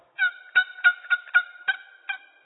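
A big old turkey gobbler gobbling in a quick series of about eight loud, bright, raspy notes, alone, with no talking.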